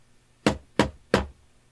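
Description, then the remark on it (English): Three firm knocks on the wooden door of a building on a fog-covered courtyard, evenly spaced, each a sharp thud with a brief decay, against a quiet background with no voices. “He leads you through a fog-covered courtyard into making sure to keep watch the entire time, and he leads you into a building that's situated on this courtyard, and knocks on the door.”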